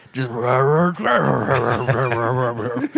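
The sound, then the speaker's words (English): Someone voices a bear's growl, a loud, strained rumbling that warbles for about three seconds with a brief break partway through, sounding almost like garbled speech. “It does growl like it's saying something.”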